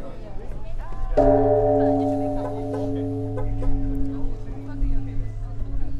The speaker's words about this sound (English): How often do they ring the bell at the temple? Usually this one is used for that time. You know, like in the Buddhism, they have how do you call that? You know, a difficult time like 1 o'clock, 2 o'clock, midnight, to the morning, like 4 o'clock.